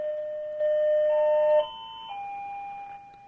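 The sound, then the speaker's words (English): An electronic doorbell at Anthony's house chimes a short sequence of sustained tones, stepping up in pitch and then back down, for the delivery of a new telephone, ringing clearly with no voices over it. “That's Anthony's doorbell, I think.”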